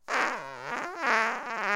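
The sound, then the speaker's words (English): A loud, buzzy comedy fart noise lasting nearly two seconds, its pitch wobbling down and back up in a drawn-out, rubbery blat, heard alone with no talking. “I'm afraid we're out of time, comedy fart machine. No, that was me, sorry.”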